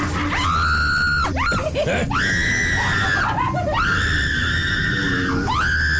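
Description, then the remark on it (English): A person in a haunted house lets out several long, loud, high-pitched screams in close succession, each rising and sustained before breaking off, with brief gasping sounds between them. “I'm going to enjoy hearing you scream.”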